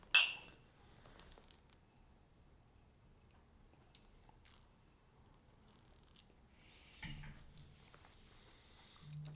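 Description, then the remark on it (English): A single bright clink of glasses in a toast with a 12-year-old, 90.4 proof spirit rings out right at the start, then fades into quiet handling noises and faint shuffling, with a couple of soft knocks later on. “Let's taste it. Cheers, sir.”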